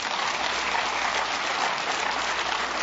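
A crowd applauds steadily, a dense wash of many hands clapping at an even, sustained level for a few seconds with no voices over it.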